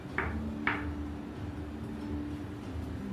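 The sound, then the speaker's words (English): Two light, polite knocks on a door, about half a second apart, followed by a steady low hum of room noise. No one speaks. “And as you're chatting, you hear a knocking at the door. Polite, kind of.”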